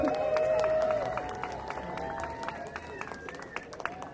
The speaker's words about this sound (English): Thank you so much for showing up today. Give yourself a round of applause.